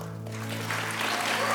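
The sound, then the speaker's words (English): An audience claps in a dense, steady patter that builds after a brief quiet moment and holds at moderate loudness, with a low electrical hum running underneath and no one speaking. “Don't need to clap for that.”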